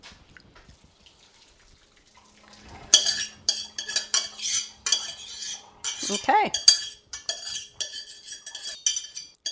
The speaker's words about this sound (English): We need to drain this now. So get out your colander, whatever you use for a colander, and we're going to dump this into the colander so that the water that remains drains off of there.